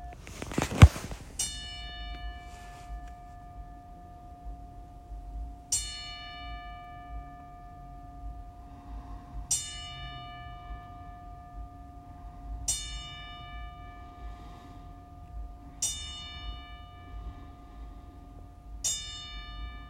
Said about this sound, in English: look, honestly, this 10-bell salute is for you. So, you know, everybody that's listening, you know, I ask that y'all take a silence. And this 10-bell salute is for all of y'all.